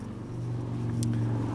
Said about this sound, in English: Nice little motorcycle going by and then a bicycle going by.